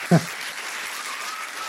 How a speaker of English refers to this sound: More golfing applause.